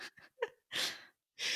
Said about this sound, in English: It's Gilly. I was like, is Gilly that Toby? Sneezing. Nope. Just good old Gilly here. What a very musical interruption.